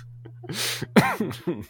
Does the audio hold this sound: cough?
yes